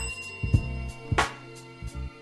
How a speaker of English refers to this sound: Honk your horn for me while I ring my bell for you.